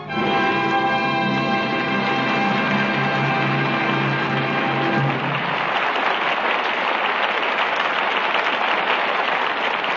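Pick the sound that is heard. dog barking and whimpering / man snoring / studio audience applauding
studio audience applauding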